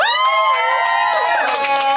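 A crowd at a graffiti class program event cheers loudly and steadily for itself, many high-pitched voices whooping and shouting together in an overlapping roar, with possible clapping blended underneath.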